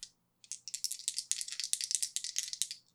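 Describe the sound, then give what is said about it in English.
Dice rattle and clatter for a couple of seconds in a roll to manipulate someone, landing on a 10: a dense run of sharp, bright clicks tumbling quickly, with no one talking over them. “That is a 10 on the dice, plus a 1 is an 11.”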